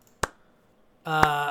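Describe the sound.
A slow clap: two sharp, separate hand claps about a second apart, the second landing just as a voice starts speaking underneath.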